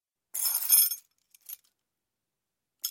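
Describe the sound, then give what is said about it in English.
A project director's bunch of keys jangles in a bright, metallic rattle lasting about half a second, then a couple of brief clinks and one more short jingle near the end, with no voices. “I'm a project director. I have keys for everything.”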